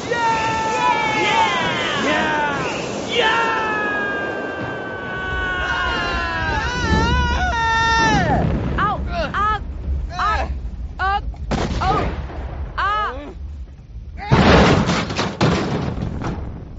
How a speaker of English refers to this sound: Our ship must have been hit in the crossfire. We came down hard, but... but we landed right in the middle of the city.